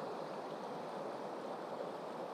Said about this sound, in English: And now I'm looking at the water. I can't quite tell if I'm picking up more water sound, but it must be different.